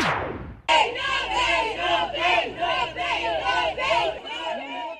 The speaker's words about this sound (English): An angry crowd of protesters gathered outside the Verulam Magistrate's Court, where a 43-year-old father made his first court appearance on charges of sexual abuse of his 10-year-old stepdaughter.